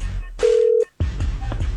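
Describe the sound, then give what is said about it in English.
A single steady electronic phone tone sounds loudly for about half a second, like a dialing beep, as the Cosmo and Cat Show morning show on Y107 places a call, followed by a short silence and then muffled, busy line noise. “Let's fire up the phones and see if we can get a hold of”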